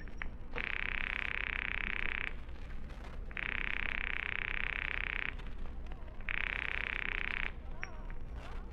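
A telephone rings on the line in three long, steady buzzing bursts, evenly spaced with short pauses between them, over a faint background hiss and no talking.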